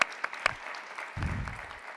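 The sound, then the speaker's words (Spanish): An audience breaks into applause for a doctor being introduced, a dense patter of many hands clapping at once, moderately loud and steady with a slight swell partway through. “Un aplauso, por favor, para la doctora.”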